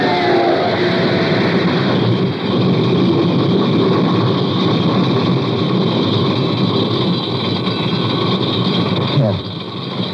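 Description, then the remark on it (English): A car's starter finally works and the engine starts and runs with a loud, steady rumble that holds throughout, its tone dipping briefly near the end. “The starter worked at last.”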